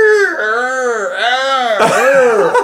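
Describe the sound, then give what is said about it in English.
A voice imitates the creaking main gate, one side off, blowing in the wind: a steady, loud, whining groan that swoops up and down in pitch several times, turning rougher and raspier near the end. “Well, they're hearing screams, and they're all freaked out, and then they walk up, and it's the gate. The main gate, the one side is off, and it's like blowing in the wind, going...”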